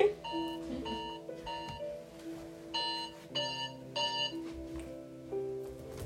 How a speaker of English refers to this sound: That's funny. I literally kept hearing it in the back of my mind, like, I know my alarm's about to go off. That is crazy.